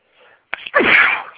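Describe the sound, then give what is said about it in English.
A single loud sneeze brought on by allergies: a soft breath in, a sharp catch, then a forceful, hissing burst that trails off. No talking is heard. “Excuse me there. Didn't bleep those out.”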